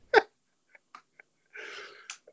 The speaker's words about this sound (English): That was a real Rick and Morty, like, burp talk you just did there.